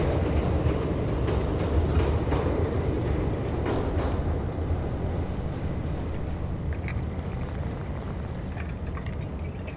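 A steady low rumble of a train rolling along the tracks, with faint rattling and clacking over a continuous roar that eases slightly toward the end. No voices.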